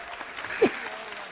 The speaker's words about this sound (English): Round of applause.